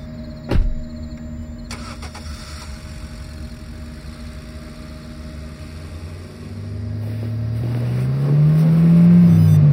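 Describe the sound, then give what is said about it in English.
A car engine idles with a steady low hum, then revs up and rises in pitch as the car backs out of a convenience store parking lot, growing louder toward the end. A brief thump sounds near the start. “My ringtone went off again, nearly causing me to swerve onto the sidewalk as I backed out of the parking lot.”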